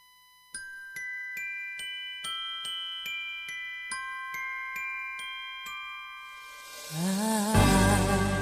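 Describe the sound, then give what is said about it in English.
A Christmas song intro opens with bright chiming bells striking a steady, evenly spaced melody, then a shimmering swell of fuller instrumentation rises loudly at the end. No voices. “Yep, it's that part of the Saturday when a song comes out for Southern Bell.”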